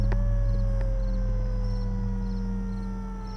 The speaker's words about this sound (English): Sirens are bawling.